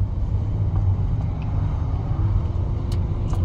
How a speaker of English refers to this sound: You know, oh, we stopped 2 trucks. I wonder why, it's always these big trucks.